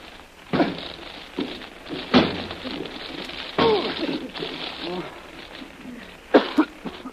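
Someone repeatedly slams against a locked door, trying to smash through it: four or five heavy, irregular thuds, each followed by a brief rattle, with strained grunts and heavy breathing between the blows.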